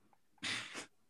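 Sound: sneeze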